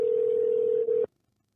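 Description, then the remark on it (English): A phone line's outgoing ringing tone on a call that goes unanswered: one steady, loud electronic buzz held for about a second, then an abrupt cut to silence. No one speaks. “All right, Henry, here comes a phone call for you.”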